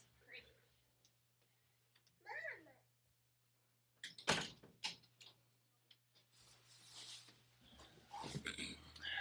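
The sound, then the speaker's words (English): A door that had been left unlocked is handled: a latch clicks, then a solid thump as it swings shut, followed by a few scattered knocks and rustling movement over a low steady hum. “So, it usually locked the door, and I didn't that time.”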